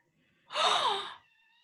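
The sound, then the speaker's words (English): A pet cat screaming for attention lets out a single harsh, raspy scream lasting under a second, its pitch bending downward, loud against near silence with a faint steady tone in the background. “Oh my God, why is your cat screaming?”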